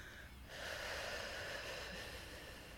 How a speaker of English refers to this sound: So now slow down your breathing and breathe into your stomach.